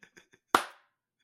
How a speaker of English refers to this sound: Like, please clap. I can hear you're not clapping.